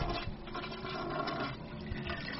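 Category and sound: household object, toilet flushing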